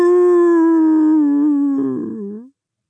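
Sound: wolf howling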